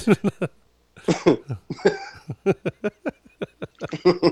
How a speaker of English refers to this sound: You are coughing a lot